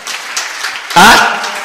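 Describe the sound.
A church audience claps for the Lord in a steady, dense wash of hand claps, and partway through a loud voice briefly shouts over the applause.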